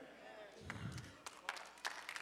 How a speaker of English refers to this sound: I thought I'd get a better applause than that.